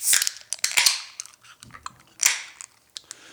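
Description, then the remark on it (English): A can of porter beer is cracked open: sharp metallic clicks and pops, then bright hissing bursts of fizz, with a second hiss a moment later. No one speaks. “All right, let's grab the can here. Let's grab the glass and let's open her up.”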